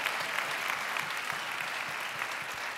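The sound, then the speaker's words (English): A crowd breaks into steady applause for UK (Kentucky), many hands clapping together in a dense, continuous patter that holds at an even level for a few seconds, with no voices standing out. “And what you guys don't realize is I just got you to clap for UK.”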